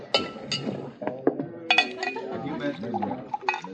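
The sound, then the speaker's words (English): A whiskey glass clinks several times in quick, uneven succession as a glass of rye is served, sharp, with murmuring voices underneath. “What'll it be? Oh, glass of rye? Yes, sir.”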